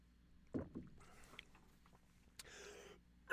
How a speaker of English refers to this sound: Excuse me. Told you I had a cough at the beginning of part one. It's showing its ugly head.